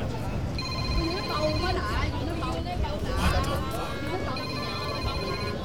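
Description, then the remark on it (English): An electronic phone ringtone trills in two bursts, about a second each, cutting through a constant background of crowd chatter and murmuring voices. “Answer your phone. It's ringing.”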